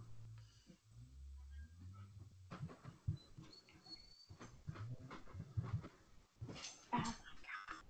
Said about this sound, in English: Dogs.